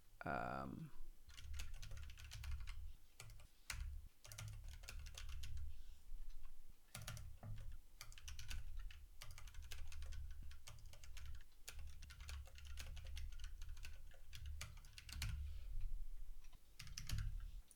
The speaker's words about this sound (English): I heard you typing and then I heard a Discord notification and I assumed correctly that it was you